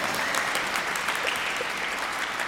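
Steady applause from a group of people, a dense, even patter of many hands clapping at once with no pauses, fairly loud throughout, and no voices heard over it.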